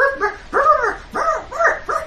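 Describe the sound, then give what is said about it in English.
A voice imitates a dog barking, giving a quick run of five or so high, yappy woofs in close succession, loud with no other talk. “And she takes the dozen steps across to you, and she looks at you, and goes the dog throughout this entire conversation.”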